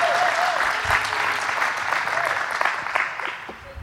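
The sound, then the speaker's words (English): A church crowd applauds steadily for about four seconds for the person running the camera and computer, a dense patter of many hands clapping at even loudness with a few sharper individual claps standing out near the end. “So that was really weak, but I think y'all mean, you mean more to them than that applause indicated, Christy, I promise you.”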